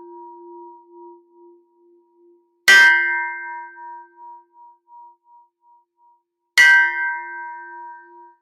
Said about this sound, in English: I'm going to use a Tibetan bell because I love this thing. And bring clear, raise the vibration.